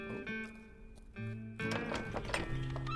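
Horses clip-clop on a hard surface with a steady run of hoof knocks, and a loud whinny rises over them.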